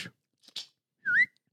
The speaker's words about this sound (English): Do you think you're better than me? When it comes to whistling? Yes. 100%.